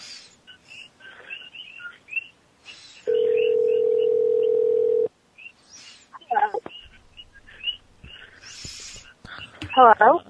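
animal, frogs croaking

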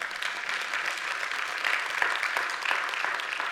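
crowd, weak golf clap

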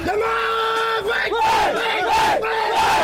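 crowd, crowd cheering

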